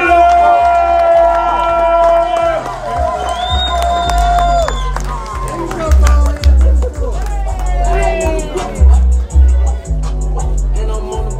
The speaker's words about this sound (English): Listen, you see this man on BET Comedy View, on Def Comedy Jam. He's a fucking comedy legend. Let's keep clapping right now for my OG, Paul Head.